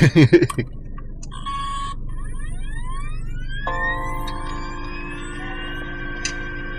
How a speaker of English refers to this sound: Is that the phone, or are we gonna die? I think there's a phone, my guy. We're gonna die. What are you talking about? Oh, it is the phone.